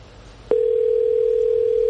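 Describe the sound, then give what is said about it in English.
After a moment of quiet, a telephone line tone switches on abruptly on a live radio call-in line and holds as a steady, loud, unbroken hum until the end, with no one speaking. “It looked like a regular phone call.”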